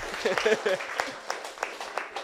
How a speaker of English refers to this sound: Thank you so much, guys. Big round of applause for you.